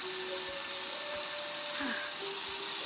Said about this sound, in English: Two-directional drill. You run it backwards, the numbers go down. Watch your speedometer.